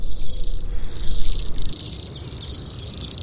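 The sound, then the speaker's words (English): A steady stream of high, thin, buzzy trilling calls from Bohemian waxwings, winter visitors, overlapping and wavering in pitch throughout, with a soft low rumble underneath and no talking. “This glamorous winter visitor is the Bohemian waxwing.”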